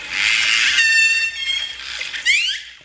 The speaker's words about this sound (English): Dan arrived with a phone full of orca sounds